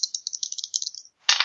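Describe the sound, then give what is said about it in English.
Two dice are rolled, clattering and tumbling in a quick run of small, bright clicks that fade out, followed by a sharper, louder burst of rattling as they settle. No one speaks. “I will roll two dice, and you can keep whichever one you'd like.”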